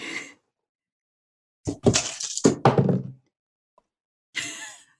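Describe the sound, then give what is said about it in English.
Dice rolled for an insight check clatter and tumble across a hard surface in a burst of sharp, rattling knocks lasting over a second, coming up 15, bracketed by short breathy or muffled sounds before and after. “My Conrad dice have betrayed me.”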